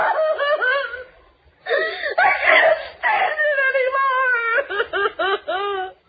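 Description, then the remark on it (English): Loud crying and wailing: long, wavering high-pitched wails broken by a brief pause, then a quick run of choppy, sobbing bursts at the end. “And crying loudly, too, when there's no reason.”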